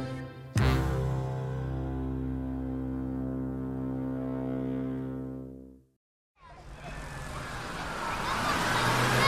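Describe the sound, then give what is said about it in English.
A bus engine drones loudly and steadily, then winds down and cuts out as it stops. After a brief silence, a broad, loud hiss follows, like air brakes or doors releasing. “Come on, let's get off of the bus.”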